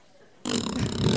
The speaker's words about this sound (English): Here's a sustained fart.